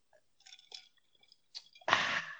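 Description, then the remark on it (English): Someone drinking: a few soft, wet mouth clicks and sips, then a sudden loud, breathy rush of sound that holds to the end. No one speaks. “We can hear you drinking it.”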